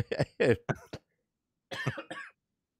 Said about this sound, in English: Don't make me laugh because I'm coughing to death over here.